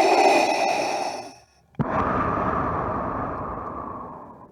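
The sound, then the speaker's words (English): Darth Vader's mechanical respirator breath from Star Wars, made by sound designer Ben Burtt with scuba breathing apparatus: a hissing, faintly whistling inhale, a brief pause and a click, then a long rasping exhale that slowly fades. Loud, with no talking. “And it was done with scuba breathing apparatus.”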